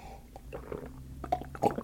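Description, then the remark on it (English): Someone sips coffee: a few short, wet slurping bursts with soft gulping between them, growing a little louder toward the end over a faint low rumble. No one speaks. “I'm not sure if this is something I normally can do in the studio, because that is actually sipping on some coffee.”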